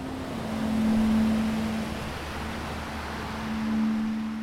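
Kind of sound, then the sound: nature, river rapids rushing water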